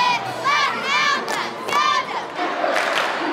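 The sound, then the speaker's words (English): Hundreds of home-team fans at a Friday night high school football game in Quincy, Illinois, cheer and yell steadily, with rising whoops and shouts riding over a dense, loud roar of many voices throughout. “It's Friday night in Quincy, Illinois, and hundreds have come out for the home team.”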